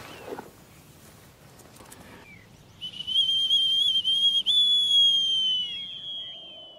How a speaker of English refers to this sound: It's a whistle. That is lovely. Good job, mate. Was that military? That's Hawking whistle. A falconer would use that, call his bird back.